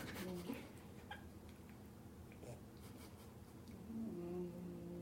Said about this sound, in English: She's snoring. It's so cute.